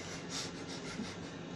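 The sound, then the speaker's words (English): An old refrigerator hums steadily, a low, even drone with a soft hiss on top that holds without change throughout. No one speaks. “Is there a refrigerator on? Yes. Okay. It's a very old refrigerator. I figured. That humming noise.”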